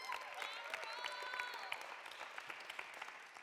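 An audience claps steadily for a few seconds for a woman coming up to share her story, a dense patter of many hands with a few whoops and cheers rising above it before it thins out.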